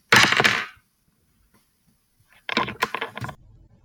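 A microphone slams down with a loud, sharp crack, then goes silent for about two seconds before a second burst of clattering knocks and rattles, with no one speaking.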